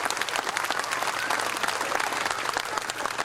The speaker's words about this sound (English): This is my dad. We got the other stepdads and surrogate fathers out there. Man, let's give it a round of applause to these guys right here. This is awesome.